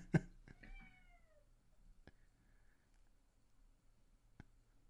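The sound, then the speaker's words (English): A cat outside lets out a single drawn-out meow that slides downward in pitch, fairly faint, with a few sharp clicks or taps scattered around it and no talking. “You hear that? You hear the meowing? I got the cats outside.”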